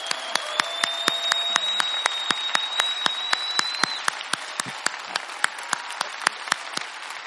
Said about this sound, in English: Merry Christmas! Let's all stand up and give Jesus a big hand. Amen! Amen!